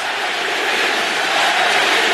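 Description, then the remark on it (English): A loud arena crowd of Bay Area Warriors fans chants "MVP" in unison while J.R. Smith attempts foul shots, the many voices blending into a dense, steady roar that holds at full strength without a break for the whole couple of seconds. “You're hearing some MVP chants from the Warriors fans.”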